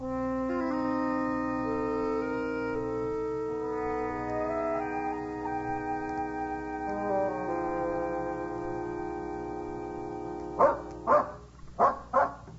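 Sustained orchestral music plays, then near the end a dog barks four times in a steady rhythm, the loud, sharp barks cutting through the lingering music.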